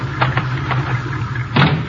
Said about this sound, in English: I'll open the garage doors.